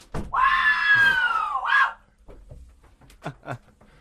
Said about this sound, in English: He's going to scream.